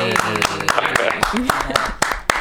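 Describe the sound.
A short, scattered round of applause: a handful of sharp, uneven claps over about two seconds, mixed with voices and cheering.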